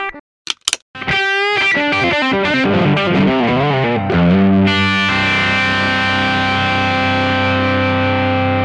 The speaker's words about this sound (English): What was that little slap and pop riff that you did?